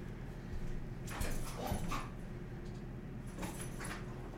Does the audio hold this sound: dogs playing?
yes